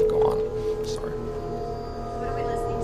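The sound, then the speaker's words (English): A large metal section of the layered border wall, bowed like an instrument, gives a sustained, eerie droning tone with layered harmonic overtones and a steady moaning quality that holds for about three seconds. “Okay, this is actually the wall in the gallows, which is in the PowerPoint presentation. What are you doing with it? It's being bowed.”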